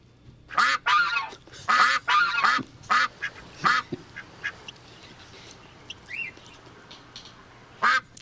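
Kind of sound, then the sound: bird, duck quacking sound effect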